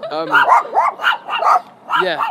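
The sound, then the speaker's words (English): Small dogs bark and yip in quick, high-pitched bursts, several sharp yaps tumbling over one another, fairly loud and excited with brief whiny tails between them. “Hey, little guys! It's okay. Oh, they're so small. I love you guys.”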